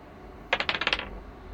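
Dice clatter across a hard tabletop in a quick burst of about six sharp clicks that settle within half a second, with no voices over them.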